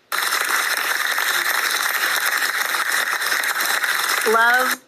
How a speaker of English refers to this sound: Love the applause.